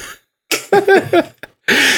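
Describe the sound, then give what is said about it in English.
A woman gives a few rough, throaty coughs with the phone already held away from her face, a quick cluster of harsh bursts followed by a short pause and one more loud, breathy cough. “And just like, she's after the phone was like already away from her face. She's like, coughing out.”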